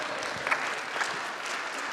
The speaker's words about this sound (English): Someone's trying to give me applause and they're feeling bad because no one else is joining them. Go ahead, join in, there you go.